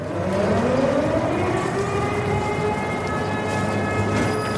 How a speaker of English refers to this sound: Every day, air raid sirens sound in Mykolaiv.